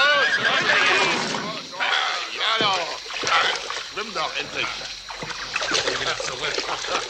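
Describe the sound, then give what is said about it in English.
A horse whinnies loudly, its shrill, wavering neighs rising over splashing water, while people's voices talk and shout through the scene. “Shove those horses in the water.”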